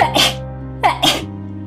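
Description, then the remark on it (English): Two sharp sneezes in quick succession, fairly loud, each a breathy burst about a second apart, with a low steady hum underneath. “Our audience is used to those sneezes by now.”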